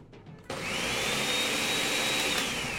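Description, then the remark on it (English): A blender making a smoothie switches on abruptly after a brief quiet moment and runs steadily with a loud, roaring whir and a thin high whine that slowly rises and falls in pitch. No one speaks. “That's my actual blender, and we're going to use it to build and blend and layer the perfect smoothie all night long until 7 p.m.”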